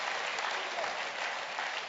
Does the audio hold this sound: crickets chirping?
no